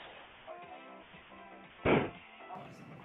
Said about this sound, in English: Did you hear that? Don't punch the wall. He just punched the wall.